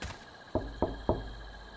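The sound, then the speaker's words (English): Three firm knocks on a door in a quick, even rhythm, clear, with a faint steady hum in the background and no voices. “If I were you, I wouldn't go knocking on people's doors.”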